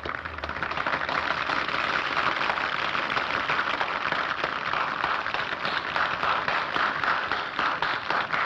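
A large film audience applauds as an opera ends in a film scene: a dense, steady wash of clapping that holds at an even loudness for about eight seconds, with no voices heard.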